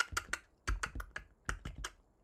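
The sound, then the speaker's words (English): Rapid simulated computer keyboard typing sound played by an automated phone system while a caller is on hold, a quick series of crisp key clicks in uneven bursts, fairly quiet, with no voices. “And you say the few words, and then they play the typing sound.”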